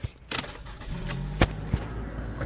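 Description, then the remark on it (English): Keys jingle and clatter in short metallic bursts as someone climbs into a car, with a few soft thumps and a low hum beneath. “Gonna go in the car now.”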